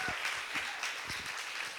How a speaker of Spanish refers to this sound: Y aquí, demos un gran aplauso por lo que Dios ha hecho en nuestra iglesia.